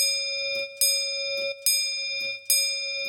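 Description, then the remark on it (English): A clock bell chimes the quarter hour in slow, even strikes, about three of them, each ringing out with a bright, lingering metallic tone that overlaps the next, with faint ticking underneath. “He had no choice but to wait for the tolling hour. A quarter past. Half past.”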